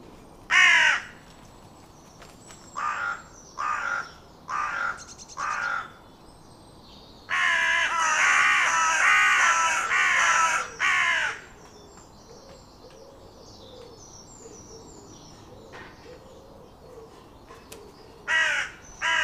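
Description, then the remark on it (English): Harsh, rasping caws from a carrion crow, given in short bursts with pauses, then a longer run of loud calls in quick succession, outdoors with a soft background. “The most recognisable call of the carrion crow is the harsh, croaky caw, caw, caw call.”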